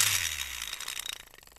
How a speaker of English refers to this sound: So, let's give the wheel a spin.